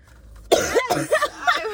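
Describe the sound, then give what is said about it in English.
After a brief silence, someone breaks into a burst of harsh, raspy coughing, several rough coughs tumbling together with a throaty, strained edge. “I'm so excited. I'm coughing all.”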